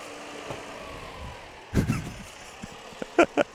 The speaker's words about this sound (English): and here comes a big tractor.